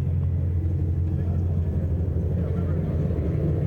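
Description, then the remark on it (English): A steady, low synthetic car motor hum, an artificial engine sound rather than a gas-powered motor, droning continuously with a smooth whooming tone and no gear changes or pauses. “I mean, you can tell it's not a motor. Like, it's not a gas-powered motor. Can you? It's got a more of a whoom.”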